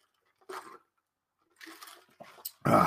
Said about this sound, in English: Dog's coughing.